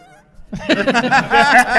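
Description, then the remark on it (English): A voice imitates the scream of a brain removed by the B'omarr monks: after a brief quiet hum, a loud, high, strained vocal wail breaks out in rapid pulsing bursts, sounding close to cackling laughter. “So after remember we talked about the brain screams and all that kind of stuff?”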